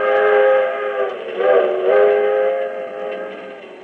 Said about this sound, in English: This is the story of an overnight train trip on the 20th Century Limited from Chicago to New York.